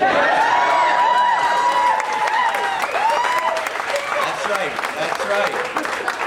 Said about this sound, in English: All the women that are clapping right now.